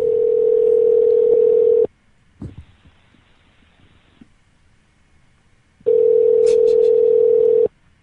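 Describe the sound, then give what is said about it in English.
A telephone ringback tone plays over the line as someone calls back. A steady, loud buzzing tone lasts about two seconds, then a pause with faint clicks and line noise, then the tone rings again. “But I'll call back.”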